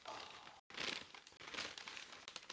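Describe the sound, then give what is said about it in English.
Continuous crinkling and rustling of a brown paper bag being opened, with bursts of crisp crackle and a brief silent gap near the start; no voices. “In the brown paper bag. In the brown paper. Let's see what we got.”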